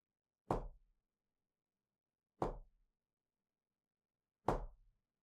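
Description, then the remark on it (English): Three slow, evenly spaced knocks on a car door while the car is being driven through fog, each a solid thud with a brief ringing tail, separated by silence and no voices. “when all of a sudden, as he's driving through this fog, he hears the sound of somebody knocking on his car door.”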